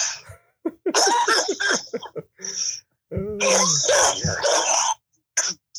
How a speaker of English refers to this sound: But you gotta, I gotta cough it up.